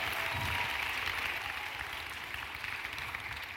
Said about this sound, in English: And thank you to our media department who got that awesome video up and going for us. They do a lot behind the scenes for each one of these services, so let's just give them a round of applause real quick.